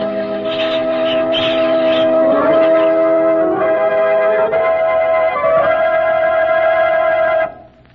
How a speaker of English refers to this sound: You should have heard the Hamelin people ringing the bells till they rocked the people.